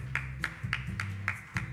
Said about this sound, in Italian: Facciamo un applauso, dai.